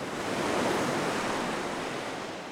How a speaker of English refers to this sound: The gales of November. In the Great Lakes, this is the season of frequent storms and tall waves crashing against the shoreline.